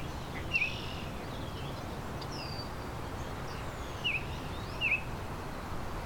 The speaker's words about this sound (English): I can hear an oriole. There's a Baltimore oriole. A high-pitched whistle.